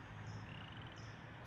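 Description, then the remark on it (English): A western toad calls in Frogtown, Los Angeles, in a steady, continuous trill, soft, with a low droning background and a few higher chirping bursts layered over it. No one speaks. “The frogs have always been in Frogtown.”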